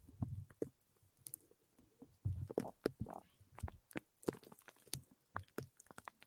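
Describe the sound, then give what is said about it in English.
Crisp tapping and rubbing of an object against a Blue Yeti microphone during an ASMR stream, an irregular patter of small clicks and soft scuffs that sounds like raindrops falling, with no talking. “I hear raindrops.”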